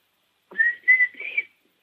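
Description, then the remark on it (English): A person whistles three short, high, slightly wavering notes in quick succession, imitating a young turkey's kiki call, with silence before and after. “It's like a whistle. We call it the kiki.”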